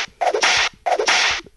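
whip crack

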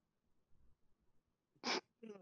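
a person yawning

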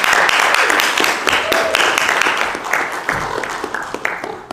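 audience applause

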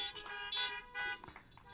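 car horns honking

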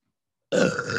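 burp

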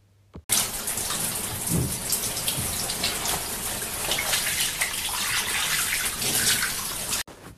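shower water running

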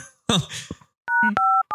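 telephone keypad dialing tones

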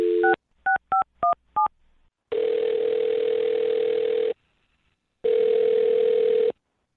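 phone number being dialed

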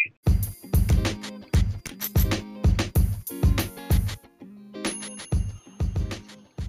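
bell chiming

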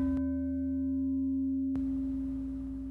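meditation chime

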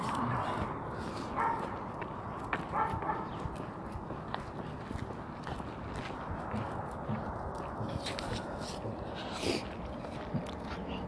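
husky dog vocalizing

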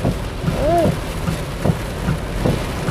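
heavy rain

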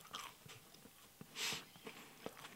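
chewing a crunchy cookie

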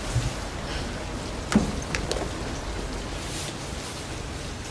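rain falling

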